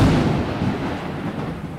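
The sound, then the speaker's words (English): A deep, loud rumble of thunder rolls continuously through the whole moment, heavy in the low end and slowly easing off, with no voices over it. It is a thunder sound effect introducing the 'Thunder round' segment. “Thunder round.”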